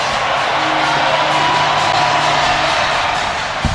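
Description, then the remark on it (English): A huge baseball stadium crowd cheers in a loud, unbroken roar after a strikeout seals a 4-2 win in Game 3 of the National League Championship Series, with held tones woven through the din as the crowd sings a slow song, lasting the whole few seconds. “Listen to this crowd.”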